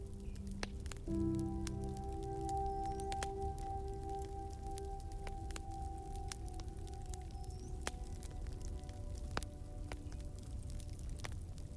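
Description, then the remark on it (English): A steady wood fire crackles and pops with many sharp, irregular snaps over a low roaring hiss, with faint sustained tones humming underneath throughout. “Hear now the crackling of the fire.”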